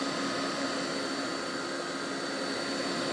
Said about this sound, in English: Let's get this blended up. Get the celery in there. Chop it all up. It's been a while since we used the blender.